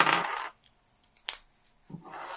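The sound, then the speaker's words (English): Dice rattle and clatter across a hard tabletop in a loud burst, then a single sharp click, followed by another rolling clatter near the end, as dice are rolled for a three-dice weapon. Nobody speaks. “No, it's a 3 dice weapon. I need another dice.”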